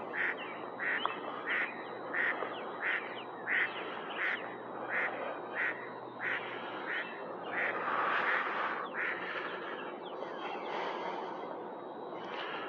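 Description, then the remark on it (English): Ducks quack in a steady, repeated series of calls, roughly a dozen nasal bursts in a row, with a busy chorus of other birds and outdoor ambience around them and no talking. “Birds and the ducks you can hear.”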